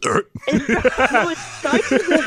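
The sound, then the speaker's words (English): A voice mimics a woman's hiccup, a short sharp catch in the throat that stretches into a croaky, drawn-out burp, repeated in quick vocal bursts. “It starts as a hiccup and ends as a burp, which is why we expect her to puke.”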